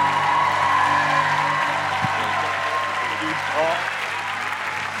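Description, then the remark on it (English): An audience at a Wednesday night church service stands, claps steadily and cheers to welcome a pastor, a dense wash of applause with scattered whoops and shouts rising over it, loud and sustained throughout. “So why don't you stand to your feet, clap your hands, and give it up”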